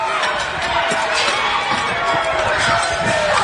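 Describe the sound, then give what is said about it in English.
A dense, steady roar of a crowd cheering and shouting at the St. Louis City Jail at night, with many overlapping voices and scattered sharp thuds and bangs as men with pipes smash out third-floor windows. “People on the ground were cheering. Guys were hanging out of the windows. That's the way it sounded last night.”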